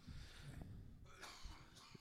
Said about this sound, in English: Not only am I coughing, I'm angry.